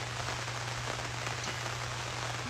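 Steady rain patters on a surface, a dense, continuous hiss of drops with a low hum beneath it, even throughout, with no voices.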